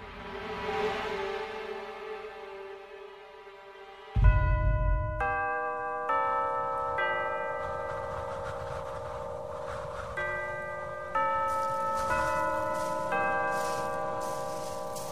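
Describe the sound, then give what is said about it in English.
A large bell tolls repeatedly in a slow, steady sequence, marking one minute to sunset, each resonant strike ringing out and overlapping the last, with a low murmur beneath and no voices. “That was the bell, sir. 1 minute to sunset.”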